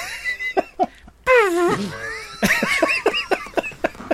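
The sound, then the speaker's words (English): A person makes a fart noise with their mouth, one of several people taking turns doing their best fart noises: a squeaky, wobbling lip buzz lasting about a second, followed by a run of sputtering, bubbly pulses, fairly loud, with scattered laughs around it. “All right, before we start round 9, let's hear everybody's best fart noises.”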